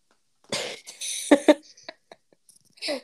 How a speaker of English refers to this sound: you're not going to get this for the rest of the episodes, me coughing